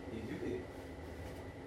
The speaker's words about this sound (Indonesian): Itu AC. AC. Kok berisik banget sih AC-nya?